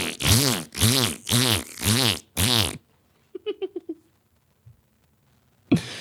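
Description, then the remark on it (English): A voice blurts out five loud, bouncy fart noises in quick succession, imitating farting over every bump while riding a jet ski, followed by a softer, rapid sputter of smaller toots, and then quiet. “Farting every bump though.”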